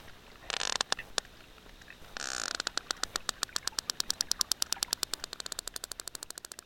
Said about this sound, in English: And so I played her some of these sperm whale clicks.